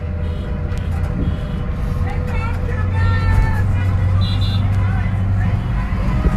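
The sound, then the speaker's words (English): Car horns beep and honk repeatedly at a group rolling through towns in central Massachusetts, over a steady rumble of passing traffic on a busy street, some honks longer and louder than others. “Listen to all these beeps that we're getting from cars out here.”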